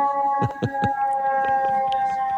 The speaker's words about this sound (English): That's an ambulance passing me. Looks like someone died. Hopefully it's not Nadal. It sounds like you're on the street. Well, I live on 3rd Avenue in New York. This is white noise to me.